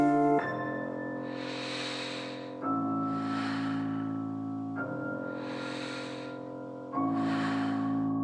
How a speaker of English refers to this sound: The duvet is heaving with my gentle breathing.